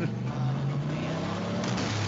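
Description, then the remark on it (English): A steady, low engine drone from an old truck on the move, with a deep rumbling hum that holds loud throughout, no voices present. “Those old school trucks, you gotta shove it in there.”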